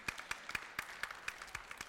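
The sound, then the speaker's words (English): A church audience claps in a steady, even rhythm, roughly four sharp claps per second, moderately loud and standing alone without any talking over it. “That's a good place to clap right there, yeah.”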